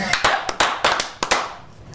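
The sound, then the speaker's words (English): Several sharp hand claps ring out in an irregular burst, fairly loud, with a few quick doubled claps and short reverberant tails between them. “I'm talking about we at the end clapping.”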